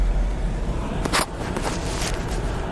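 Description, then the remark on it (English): Steady, loud road rumble and engine drone fill the inside of a noisy car driving into town through a major storm with hail, with a couple of brief whooshing bursts partway through and no voices. “And we're heading into town in the noisy car.”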